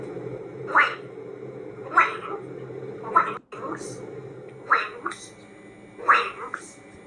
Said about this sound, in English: You know, if that macaw is hearing the phrase gray goose enough that it starts saying it, well, then we have to have a conversation with